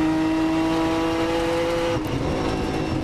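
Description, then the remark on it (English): A race car's engine on a track holds a steady, loud, high-pitched drone, then drops sharply about two-thirds through as the car gets light coming over a hill, with a rough roar continuing to the end. “Car gets a little light coming over that hill.”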